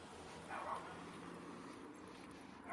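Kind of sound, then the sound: animal, dog barking and whimpering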